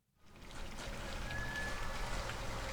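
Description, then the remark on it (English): Harbor dock ambience at the Bar Harbor North Floats, a city-owned harbor dock in Ketchikan, on a clear, snowy day, fades in quickly, then holds as a steady wash of lapping and trickling water with a low rumble beneath and a faint thin tone drifting in the background. “He's standing near a boat his grandfather built on the Bar Harbor North Floats, a city-owned harbor dock, talking to other fishermen on a clear, snowy day.”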